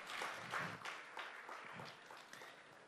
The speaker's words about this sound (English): You should applaud yourselves.